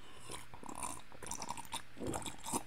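Close, wet slurping of a drink, a run of noisy sucking and gulping bursts over a few seconds, moderately loud, with no talking.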